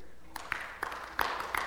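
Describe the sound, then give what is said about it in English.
A row of people in a church clapping together, sharp overlapping claps landing in a loose, steady rhythm about every third of a second, fairly loud over a soft background hum. “Okay, then the whole row.”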